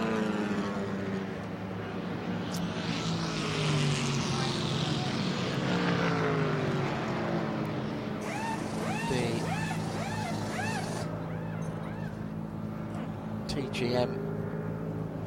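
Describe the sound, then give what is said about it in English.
The number 11 red, white and black Mercedes race car's engine roars steadily as it passes under the Rolex arch and rolls into the pit lane, its pitch shifting as it slows, with a voice talking over the constant mechanical drone. “It's gone under the Rolex arch as on to pit lane the Skillsoft number 11 red, white and black Mercedes.”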